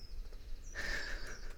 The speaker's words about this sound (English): I wonder what breed he is. If you know anything about birds and you can identify what kind of bird that is, maybe we can, like, send it a peace offering.